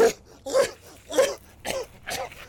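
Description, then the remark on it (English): A fairly loud fit of harsh gagging coughs: about five rough, throaty bursts in quick, uneven succession, with strained voiced retching between them. “Someone gagging and coughing.”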